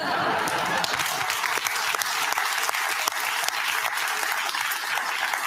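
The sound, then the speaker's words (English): A subdued audience applause for Bill Maher, many hands clapping in a dense, steady patter that holds an even level for several seconds without swelling or cheering, with no voices on top. “The muted version of applause is really interesting to me, because every time that Maher goes against the grain of his political side of the aisle that he's long been tied to.”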